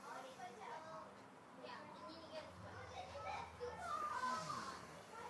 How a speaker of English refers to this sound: Notice the kids playing. Don't push it out.